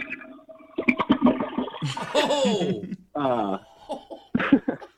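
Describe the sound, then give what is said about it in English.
A toilet, flushed by a roommate, flushes with a loud, gurgling rush of water that swirls and drains away over a few seconds, while someone laughs in short bursts over it. “That probably sounded like a toilet. It was a toilet. It was my roommate who flushed it.”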